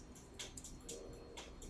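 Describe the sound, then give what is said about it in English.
Dice clatter quietly across a surface, a handful of small, sharp clicks and rattles spread unevenly over a couple of seconds, with no talking. “Just throw an 8. Yeah, I'll throw an 8 at you.”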